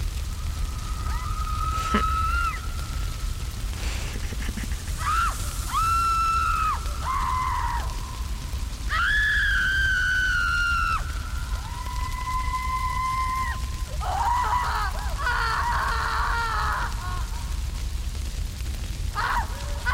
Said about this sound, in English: Once the screams subside.